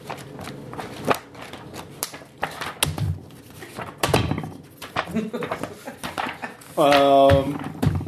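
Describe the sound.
The paper of a book crackles and rustles in a string of uneven, crisp bursts as its pages are handled, with a short voiced sound breaking in near the end.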